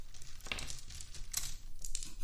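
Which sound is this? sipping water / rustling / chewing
rustling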